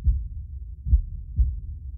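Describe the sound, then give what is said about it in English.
A slow heartbeat of deep, muffled thumps, three low pulses over about two seconds, sitting on a steady low rumble with no voices. “Slowly, slower than your heart has ever beat.”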